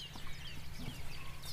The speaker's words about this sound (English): First wren, wasn't it? It was a wren, wasn't it?